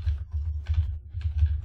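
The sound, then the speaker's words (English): Typing on a computer keyboard, a quick irregular run of soft key clicks over a steady low hum, with no voices. “The sound of my typing.”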